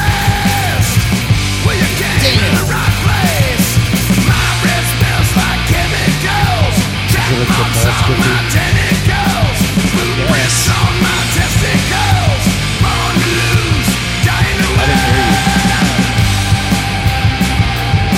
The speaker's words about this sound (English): Listen to that yell. So mad.